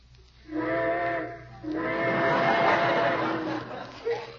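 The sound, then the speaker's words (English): A steam train whistle sounds twice, a short blast followed by a longer, sustained wail with a rich chord-like tone, moderately loud over a faint low rumble and hiss. “Trains, how I love them.”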